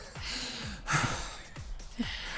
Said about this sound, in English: Just what every podcast needs is a lot of heavy breathing directly into microphones. Yeah, a lot of heavy breathing.